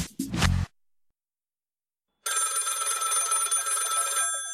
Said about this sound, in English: Phone rings.